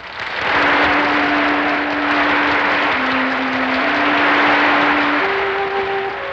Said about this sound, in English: Wanda enters to applause, says something witty.